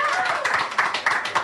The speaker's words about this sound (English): Welcome to the final Don't You Know Who I Am of the season. A round of applause if you've been to one of the live ones already this season.